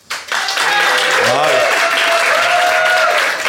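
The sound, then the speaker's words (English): A Soho Theatre audience applauds in a dense, steady burst of many hands clapping for a few seconds, voting by applause on who is in the right, with scattered voices calling and whooping over the clapping. “So instead, I'm going to call upon our Soho Theatre audience to decide.”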